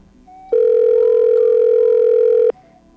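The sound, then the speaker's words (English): A single steady telephone ringback tone, a loud two-second electronic hum heard through the line as an outgoing call to the Hare Krishna rings, with quiet background before and after. “Guess who we're calling?”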